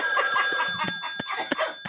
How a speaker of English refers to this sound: the phone is ringing. I'm not answering the phone. Answer the phone.